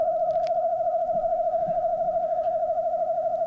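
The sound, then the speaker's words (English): A wood thrush song slowed to one-tenth speed, from the right voice box alone: one steady, hollow whistled tone held at an even pitch for several seconds, clear with nothing else around it. “Here's another clip from a wood thrush, this time slowed down to 1/10 speed so that we can hear the contributions of the two separate voice boxes.”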